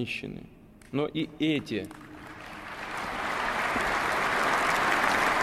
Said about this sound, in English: You see people applauding, a number of Russian religious leaders out there.